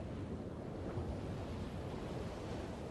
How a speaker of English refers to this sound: It's a lot easier to get up for a run when you've got the nice weather, the sound of the beach, the smell of the sand and the sea, you know, with the sun bouncing off it.